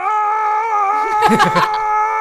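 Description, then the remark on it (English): A voice imitates the screaming of elderly care home residents with dementia, as heard while working in a garden: one long, steady, high-pitched wail, about two seconds, that breaks into a quavering, wobbling cry near the end. “I just hear the screaming of, dementia-riddled old folk.”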